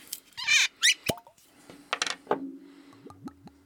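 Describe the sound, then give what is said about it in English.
A copper-coloured drink poured right by the microphone: splashy bursts at first, then a run of quick, rising gurgles and glugs as the liquid settles. No one speaks. “That's not a sound effect. That is me pouring right near the mic.”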